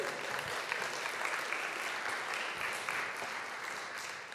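An audience claps steadily, a dense, even wash of hand claps holding at a moderate level throughout with no voices standing out, tapering only slightly at the end.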